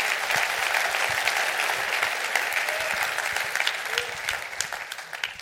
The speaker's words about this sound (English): I am God who never gives up on my children, signed God. I want you to clap your hands for that. That's good stuff.